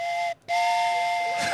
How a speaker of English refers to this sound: And the guard blew his whistle.